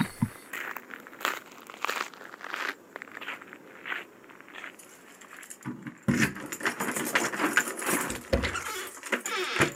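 Keys jangle and rattle, with a busy run of metallic clinks and shuffling handling noise mixed with a few footstep-like thuds, growing louder toward the end; nobody speaks.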